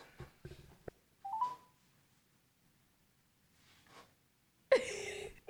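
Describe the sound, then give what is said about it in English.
A phone call rings out over a speakerphone, heard as a brief electronic tone amid quiet handling noises, followed by a sudden loud burst of rustling near the end. “It's ringing.”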